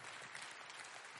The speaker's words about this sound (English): everybody give her a welcome, applause.